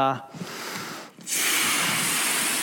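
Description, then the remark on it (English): Someone blows air into a green balloon: a brief voiced breath, then two strong, breathy blowing bursts separated by a short pause, the second longer and louder. “I'll blow it up here a little bit.”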